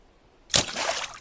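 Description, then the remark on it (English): A brief hush, then a sudden bright splash of water that swells and lingers as a hissing, echoing wash before fading: a pebble thrown down a very deep well to see if there is water at the bottom. “Throw a pebble in it and see if there's water down there.”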